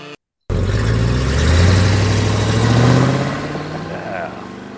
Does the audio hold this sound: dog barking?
no